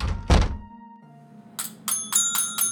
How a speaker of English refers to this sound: Oh, I just tripped over something, dear. Watch your step.